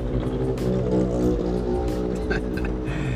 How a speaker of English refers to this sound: That scooter is—he's going max speed there, and it's barely going forward.